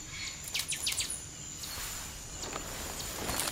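bird, birdsong

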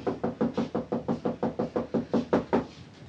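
household object, knocking on a door

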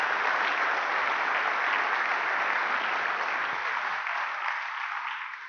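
crowd, audience applause

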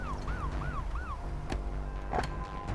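vehicle, emergency vehicle siren

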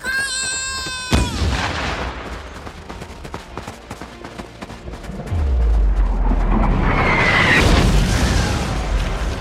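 sound effect, heavy artillery fire

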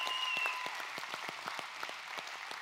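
crowd, hand clapping applause

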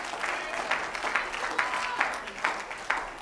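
crowd, audience clapping and shouting

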